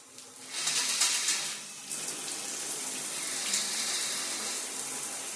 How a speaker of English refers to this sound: Now shower. And the gorgeous Gandalf of goodness sheds his pajamas, stepping with the grace of a panther into the spray of water.